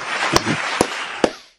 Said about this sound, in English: There's an applause one here. Hold on.